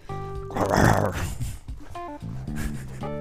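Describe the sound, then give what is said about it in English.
A voice imitates a dog's growl, one rough, snorting rumble swelling in the first second, followed by short throaty grunts and voiced sounds. “She'll pee or poop and she'll do the digging in the ground and she'll growl at her deposit.”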